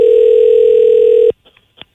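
A steady, loud telephone dial tone hums for over a second, then cuts off abruptly, followed by a few faint clicks and a brief blip as the call connects.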